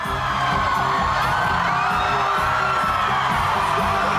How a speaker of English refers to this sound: This guy's helping her up. She can't believe it. Look at her. She's screaming.